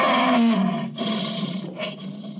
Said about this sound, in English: Captive lion.